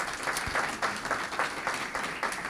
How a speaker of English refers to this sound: Well, thank you both. A round of applause for this exchange so far.